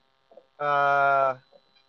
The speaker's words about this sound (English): that humming sound is just a converter that Chino's using so that his iPhone stays charged